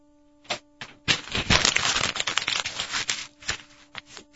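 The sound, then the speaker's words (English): Paper being crumpled, a few sharp crinkles at first, then a dense burst of crackling that scrunches on for a couple of seconds before trailing off into scattered rustles. No one speaks. “Let's just see how long that piece of paper sits there.”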